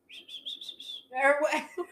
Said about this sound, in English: Hoping I'm not whistling right into it.